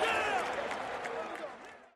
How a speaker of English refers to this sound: And as you might expect, some of the greatest baseball fans in the country here in St. Louis standing and applauding the Houston Astros, as well as the performance of their Cardinal team throughout the summer and into this postseason.